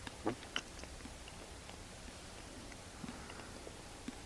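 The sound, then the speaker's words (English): Soft, sparse mouth sounds of chewing juice while drinking it, a few faint wet clicks and smacks spread out over a quiet background, with no talking. “As you take your juice like this, take time to chew.”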